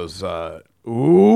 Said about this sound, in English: They're booing her and shit. They're booing her because she's a bag of shit and she's pro-PLO.